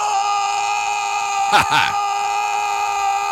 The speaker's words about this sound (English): wheel out my brand new sound effect here on the show, Mike. I've got Nicolas Cage screaming fuck